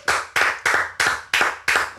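A short burst of clapping, about six sharp, evenly spaced claps in a steady rhythm, close and fairly loud, with no voices.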